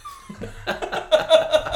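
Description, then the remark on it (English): A voice imitates a shotgun with the mouth: a short falling whistle followed by a quick series of breathy, percussive bursts in a loose rhythm. “A shotgun.”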